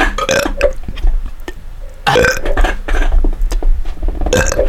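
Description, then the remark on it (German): Loud burps follow one another in quick succession, several guttural belches with brief pauses between them and a long, drawn-out one near the middle. “Ey, wir rülpsen jetzt bis zu einer Stunde.”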